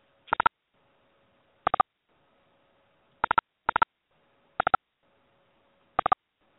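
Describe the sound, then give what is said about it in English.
A telephone being dialed to call back a caller on a cell phone whose call dropped: short clusters of electronic key beeps at irregular intervals, each burst a quick flurry of tones, over a faint steady hum, with no one talking. “Let me just call back into them very quickly.”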